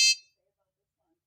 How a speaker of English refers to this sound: Oh my goodness, you know what that is. That would be the feedback phone.